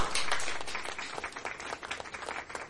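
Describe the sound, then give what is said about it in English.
An audience applauds a speaker after his message, a dense wash of many hands clapping that starts full and gradually thins into scattered, uneven claps as it fades. “Let's give Peter a round of applause for his message today.”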